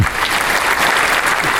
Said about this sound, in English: That only gets half applause.